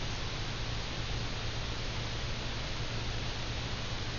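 Steady static hiss with a low electrical hum underneath, constant and unchanging throughout, like interference on an audio line. No voices, just the continuous buzzing noise at moderate level.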